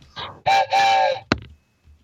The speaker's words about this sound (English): Man, that whistle, I can't get over it. It's so deep and rich.